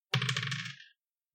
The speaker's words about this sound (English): Roll me 3d6. Okay, I wanted to use my animal dice. Okay, go for it. Animal d6.